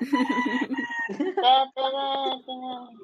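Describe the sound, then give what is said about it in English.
Chickens cluck and squawk in a busy, overlapping run of calls, some drawn out and nasal, filling a few seconds without pause. “We have chickens for guests.”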